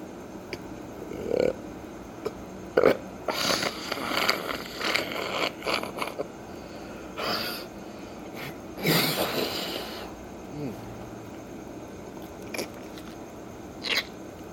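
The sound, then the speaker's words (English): Harsh throat hacking and guttural clearing in irregular bursts as a person tries to expel phlegm, a few rough rasps separated by short pauses, with no talking over it. “Sorry, it's my fucked up body trying to expel some phlegm that was, I don't know, caught when your autonomic functions don't work as they should.”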